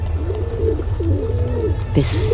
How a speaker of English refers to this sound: You hear the cooing of hundreds, thousands of pigeons.